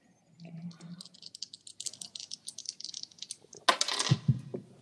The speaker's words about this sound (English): Dice on the floor.